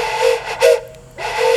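A soft, breathy toy-train whistle sound effect, likely made by a person's mouth and done quietly on purpose, sounds in two hissy blasts with a short gap between them. It is fairly quiet, with no talking.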